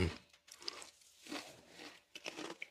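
Loud crunching of a hard Mystique Barbecue flavored potato chip being chewed, several sharp brittle bursts in an irregular rhythm with brief pauses between bites, and no talking.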